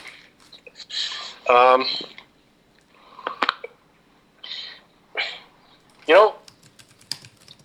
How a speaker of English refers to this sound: They're actually really good. Cannot complain about these cats.